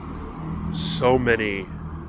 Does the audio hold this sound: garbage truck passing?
yes